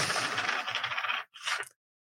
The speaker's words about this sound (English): These coins are pretty cool. They're like ancient Chinese coins from some archaic dynasty. Okay, third throw.